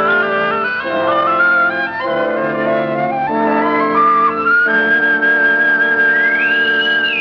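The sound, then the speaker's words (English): A bosun's whistle pipes shrill, sustained notes over a dense tonal backdrop, ending in a rising, swooping call, piping people aboard a ship. It is loud, with no talking. “A bosun's whistle. They're piping us aboard.”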